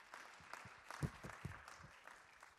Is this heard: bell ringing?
no